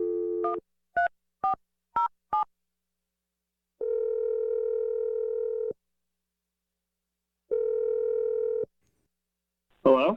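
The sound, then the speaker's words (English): A short dial tone gives way to five quick touch-tone beeps, followed by two long, steady ringback tones separated by silence, and then a voice picks up at the very end. The call is placed by the morning radio show Brooke and Jeffrey in the Morning. “I'm going to dial the number right now.”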